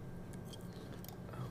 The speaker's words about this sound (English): Eating apples.